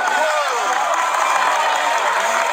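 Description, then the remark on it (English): A small crowd, including some celebrities, cheers and shouts continuously while watching Chris Angel levitate Shaq, a dense wash of overlapping voices with scattered claps, steady and fairly loud throughout. “A small crowd was also there watching the event, including some quote celebrities.”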